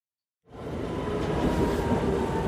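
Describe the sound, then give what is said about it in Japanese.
After a moment of silence, a train pulls into a station with a sudden, loud, steady rumble and a faint metallic whine, continuing without letup, a strong gust of wind blowing as it arrives. “電車が入ってきました。”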